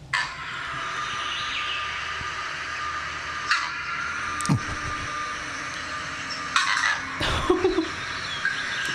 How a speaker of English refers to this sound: you are a vervet monkey and you hear this alarm call.